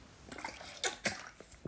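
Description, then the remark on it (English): Someone takes a quick sip of water, with a few soft slurping and swallowing sounds, two of them briefly louder, in an otherwise quiet moment with no talking. “Sip of water. Gotta stay hydrated.”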